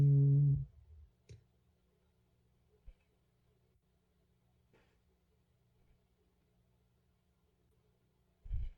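Dice clatter onto a tabletop, one die having words on its 6 and 1 faces: a few sharp, isolated clicks spaced seconds apart, with dull low thumps at the start and end and quiet room tone between.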